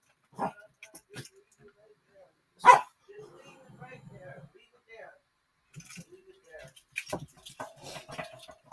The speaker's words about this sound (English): You want to come back inside? Yeah, I heard you out there barking, playing in your yard. You got a whole backyard.